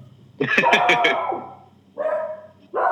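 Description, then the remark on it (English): A dog on a reservation barks in a rapid burst of four or five sharp, loud barks, followed by a couple of longer, drawn-out tonal yelps or calls. “I got dog over here barking, too.”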